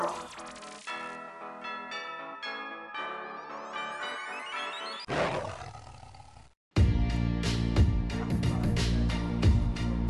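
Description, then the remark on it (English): A loud, rough tiger roar bursts out partway through the intro of Hastings High's Tiger Cub Roar show, set between bright, ringing musical tones and followed by a dense, driving burst of music. “From the far reaches of space and time, and into the hallways of Hastings High, comes the Tiger Cub Roar.”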